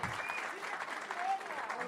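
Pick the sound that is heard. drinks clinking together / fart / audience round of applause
audience round of applause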